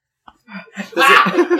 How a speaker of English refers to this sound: Everybody's laughing because I have the hiccups now, and it sort of like disrupted the story.